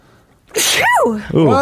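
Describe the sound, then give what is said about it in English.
A single loud sneeze bursts out after a moment of quiet, with a sharp inhaled buildup and a forceful release, followed by a brief voiced trailing sound. “That's a live sneeze.”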